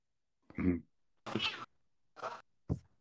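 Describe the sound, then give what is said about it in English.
A cat meows four times in quick succession, fairly loud, with plaintive, drawn-out cries that sound unhappy, separated by short silences. “Cat. Unhappy cat, right?”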